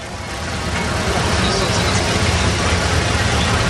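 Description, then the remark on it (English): Police motorcycle and car engines rumble steadily and loudly as police escort a ride, mixing with a busy crowd murmur and street noise throughout, without a distinct single pass-by. “by this time, the ride had developed into three separate rides, one being sort of escorted with the police on bicycles, the other police on motorcycles, and then the last, the little golf cart and a car.”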